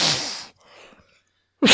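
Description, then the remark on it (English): A hand-and-mouth imitation of a fart, coming out as two loud, airy, hissing bursts more like rushing wind than a real fart, with a short quiet gap between them. “I will say if that was a fart, seek medical help because.”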